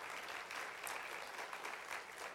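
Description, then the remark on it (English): An audience claps their hands for Jesus in a dense, steady burst of applause, many overlapping claps forming a continuous crackling wash with no voices standing out. “Go ahead and clap your hands for Jesus.”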